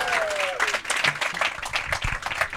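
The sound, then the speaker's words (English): Audience applause for Captain Blackadder fills the whole stretch, a dense, steady patter of many hands clapping at a fairly loud level, with a brief whistle near the start and a few faint voices underneath. “So let's hear it for, I guess, Captain Blackadder.”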